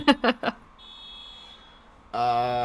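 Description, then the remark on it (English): A car alarm blares, with three quick bursting chirps, a thin high tone, and then a loud, steady, buzzing electronic wail that cuts in and holds. “Well, I guess we'll power on with a car alarm just going off.”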